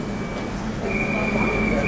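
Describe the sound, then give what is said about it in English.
A train conductor's whistle on a station platform as passengers board, signaling the doors closing, sounds one long, steady, high-pitched blast over a continuous low rumble of train and platform noise, with murmuring voices in the background. “Hear the conductor whistle.”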